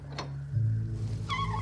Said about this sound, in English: The veins on her pale white hand stretch as she grasps the brass handle, and the heavy oak door creaks loudly as she pushes it open.